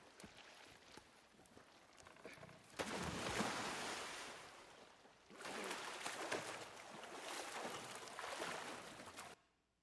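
Ocean waves wash and surge around a small drifting raft at sea after a storm, two big swells rising loudly over a constant hiss of water and wind, fading out abruptly at the end.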